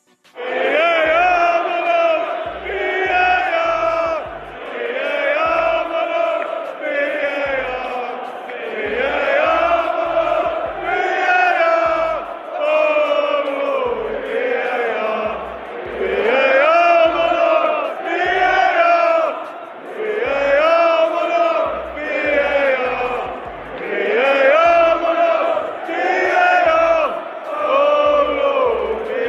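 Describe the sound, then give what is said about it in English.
A large crowd of Tottenham Hotspur football fans chants in unison, singing about VAR, loud and sustained, repeating a melodic phrase in a steady rhythm with short breaks between lines, carried on for about half a minute. “That was Tottenham Hotspur fans singing their love and appreciation for VAR, which once again was at the center of attention”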